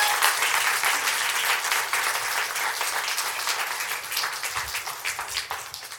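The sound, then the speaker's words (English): At a church service, an audience applauds the children in sustained applause, a dense, even wash of many hands clapping at once that holds steady for several seconds and slowly tapers slightly toward the end. “Give them a big round of applause, guys.”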